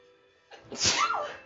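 A single forceful sneeze bursts out after a brief quiet lead-in, a sharp breathy explosion that trails off into a rough exhale.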